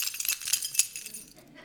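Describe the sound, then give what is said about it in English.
A bright, metallic jingle of keys as Scrooge pulls them from a pocket with a great flourish at his door: a quick flurry of overlapping clinks for about a second, with one sharper jangle, then a softer rustle as it settles. “He produces the keys from a pocket with a great flourish.”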